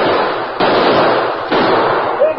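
Two loud, sharp gunshots crack out about a second apart, fired at a man running from a house toward a horse, each leaving a dense, hissing wash of noise that lingers between the shots. No one speaks.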